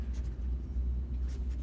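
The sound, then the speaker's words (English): A Sharpie marker squeaks across paper in a few short, scratchy strokes, with a steady low rumble underneath and no talking. “God, I love that sound. Beware there. The destroyers. The Sharpie on the paper.”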